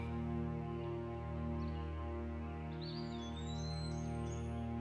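A few faint bird chirps and a rising whistled call in a garden with trees, sitting over a loud, steady low humming drone that runs throughout.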